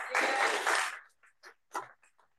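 A brief burst of applause, dense and fairly loud, lasts about a second before cutting off, followed by a few short fragments of a voice.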